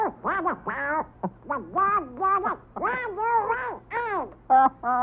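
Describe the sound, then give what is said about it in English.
A Donald Duck cartoon voice quacks and sputters in a rapid, garbled burst of nasal squawks, loud, running continuously for several seconds with brief gaps. “I'll bet, Donald, you're glad you're just a duck and not an animator.”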